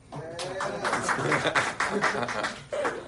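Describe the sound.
A short burst of scattered clapping from a small group, lasting a few seconds, with voices and cheering mixed in throughout, after it is announced that a woman still has her medical card for two more months.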